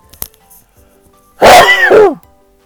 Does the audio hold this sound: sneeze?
yes